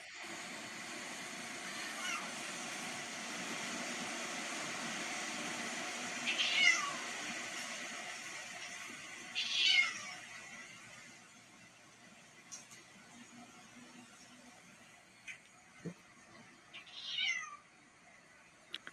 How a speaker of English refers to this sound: That would creep me out. He's almost, he's like looking back, the cat's like looking back, like, almost like, and then looking at the door and meowing? That would freak me out.